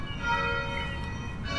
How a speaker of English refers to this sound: Nice to hear the settler colony bells ringing, reminding us all we're in a settler colony. A church's bells are ringing.